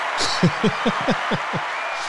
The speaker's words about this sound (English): I get a ticker and I get cheers. Absolutely. Everyone gets, you get an artificial cheer and a ticker.